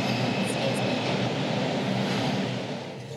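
A subway train rumbles steadily along the rails, a dense, continuous roar with low clattering underneath, loud for the whole stretch before easing off slightly at the end.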